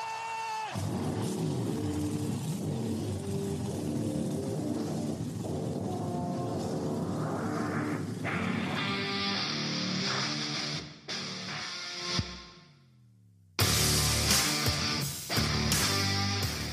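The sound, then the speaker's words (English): Several loud race car engines start and rumble together and rev higher, building to a rising roar, then cut out briefly before roaring back even louder. Dense, with no talking. “Drivers, start your engine!”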